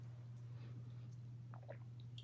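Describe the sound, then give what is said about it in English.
A quiet sip of water flavored with cucumber and a hint of lime: a couple of soft, wet slurping and swallowing sounds over a steady low electrical hum, with no one talking. “I have sparkling water as well, but I'm also gonna take a sip of that first.”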